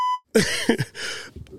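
A single short, clear electronic beep sounds loudly at the start, then cuts off and gives way to rough, throaty coughing-like noises.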